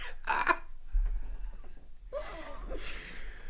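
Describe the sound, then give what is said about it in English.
Stifled, muffled coughing from someone who has just taken a hit and is trying not to cough into the microphone: a short breathy burst, then after a pause a longer strained one that trails into a wheezy exhale, over a low rumbling thump. No one speaks. “Yeah, you know, I took a hit, and I'm just really trying not to destroy the mic here by coughing, so...”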